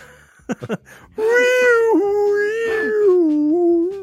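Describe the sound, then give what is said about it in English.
An educational toy's synthetic whale call: a long, loud, wavering moan with rich harmonics that swells and dips in pitch for nearly three seconds, preceded by a few quick soft clicks. “Easily, whales have the best noise, right?”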